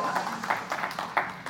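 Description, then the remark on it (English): A church audience applauds a guest called up on stage before the sermon, the claps coming in uneven, overlapping bursts with a few sharper peaks. The applause is moderate in loudness and lasts only briefly. “Never have too many people applaud when I get up to preach.”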